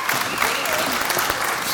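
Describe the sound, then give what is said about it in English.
An audience applauds steadily, a dense wash of many hands clapping at once with a few scattered cheers mixed in, holding an even loudness throughout. “Give it up for Bitches Get Riches.”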